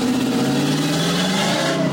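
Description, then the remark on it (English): A loud, throaty engine of a jacked-up truck revs up, its deep rumble rising and holding steady for a couple of seconds with no voices. “Oh man, I wish I was so impressive that I had a truck that allowed engine. Was jacked up like that.”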